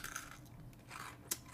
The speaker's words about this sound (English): And we're sitting here eating brownie brittle with Reese's Pieces in it. Oh, my God. So good. It's at Sam's Club, if you guys are wondering. It's so good. Just listen to the crunch.